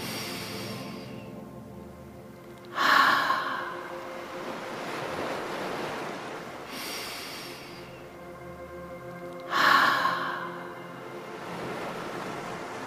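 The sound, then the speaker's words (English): Slow, gentle 'ocean breaths' in a guided breathing exercise in starfish pose: in through the nose, then pushed out through an open mouth, each a long airy whoosh like surf. Two full breath cycles repeat about seven seconds apart over a soft, steady musical drone. “Open your mouth and let the air come out like the ocean. Let's try 2 or 3 more gentle ocean breaths.”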